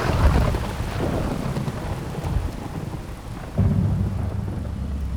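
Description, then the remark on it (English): Heavy rain pours down steadily over a building site while deep thunder rumbles low, swelling again near the end. There are no voices, only the dense roar of the storm. “A chronicler monk of the day describes how the people on the building site react to this grisly storm.”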